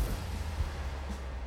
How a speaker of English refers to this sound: You hear behind you kind of an explosion.